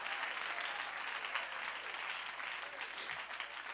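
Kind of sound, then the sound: crowd, audience clapping hands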